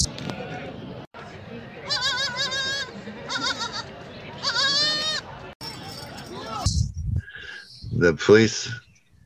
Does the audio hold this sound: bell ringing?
no